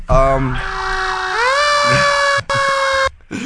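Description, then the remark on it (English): A loud electronic ambulance siren wails, its tone sliding upward and then holding steady, with a couple of abrupt brief cutouts near the end. “Let me get the ambulance.”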